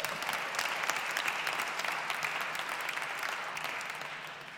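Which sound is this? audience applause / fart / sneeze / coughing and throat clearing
audience applause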